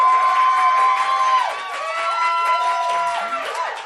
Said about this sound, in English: So if you think the winner of the debate tonight was Justin Parlette, please clap like mad. And if you think of the winner of the debate tonight was Carrie Cook, please clap like mad.